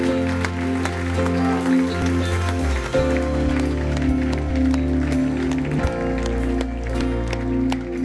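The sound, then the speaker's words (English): An audience claps together in a dense, continuous burst of applause lasting several seconds, given as a clap offering to the Lord, with steady sustained music droning underneath the clapping. “Give the Lord a great clap offering, everybody.”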